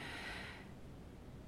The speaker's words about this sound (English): Breathing out.